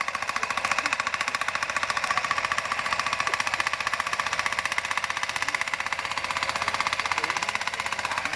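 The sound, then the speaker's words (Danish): A pneumatic post driver, set on top of a tree's support post and held in place by workers, hammers the post down with pressure in a rapid, unbroken stream of sharp metallic blows, steady and loud for the whole stretch, with no voices over it. “Og så sætter de den ovenpå, og så står de og holder den, og så hammer den ned. Det gør det med tryk.”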